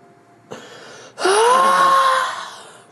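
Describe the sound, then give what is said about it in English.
A short breathy intake, then a long mournful wail that swoops upward and holds a steady, hollow tone before slowly fading away with a lingering echo-like tail. “As you call it out, I have your echo. Mournful wail.”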